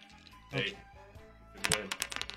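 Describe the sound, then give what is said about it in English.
Dice clatter off a table in a quick burst of sharp, uneven clicks that bounce and scatter before trailing off, following an earlier soft knock, with faint voices murmuring in the background. “Oh, my God, you rolled it off. Off the table.”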